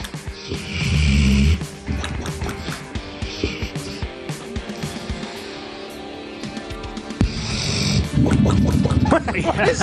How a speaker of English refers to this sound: This is a dog snoring, and then you get, sounds like a bong hit.